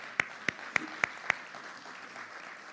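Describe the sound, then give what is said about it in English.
An audience claps for the biblical Mary: five sharp, evenly spaced claps ring out in a steady rhythm, then give way to a soft, faint murmur with no talking. “Let's clap it out for Mary.”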